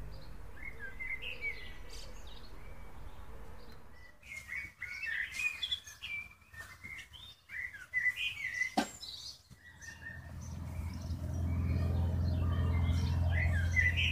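A bird sings a short, tuneful series of chirps and whistles, repeated phrases rising and falling like a little melody, heard outdoors over a low steady background rumble that swells toward the end.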